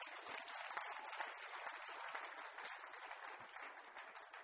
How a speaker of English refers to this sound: Clap your hands for God.